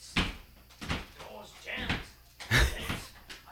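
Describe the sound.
A jammed door is shoved and rattled by someone trying to get out, in several bursts, with thuds and clattering bumps about a second apart, while faint voices murmur between the jolts.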